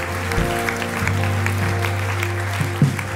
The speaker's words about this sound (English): Can we applaud those again that have responded to Jesus?